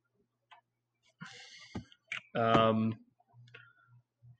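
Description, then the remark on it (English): A handful of sharp, quiet clicks at irregular intervals as someone navigates an app, with a short loud vocal sound and faint murmurs in between. “I don't even know what I'm clicking at.”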